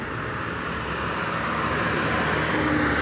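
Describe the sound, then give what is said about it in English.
A bus's engine rumbles steadily and grows slightly louder as it approaches a bus stop, a continuous low drone with broad road noise and no voices. “There it is. Okay, there's the bus.”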